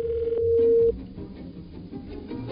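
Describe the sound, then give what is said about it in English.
A phone line rings out on an outgoing call: one steady electronic ringback tone, clear, lasting under a second before cutting off into quiet line hiss, with no answer. “Nobody answers their phone anymore.”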